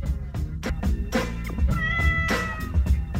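A cat meows in a drawn-out, wavering cry, clear, over a low steady rumble with no one talking.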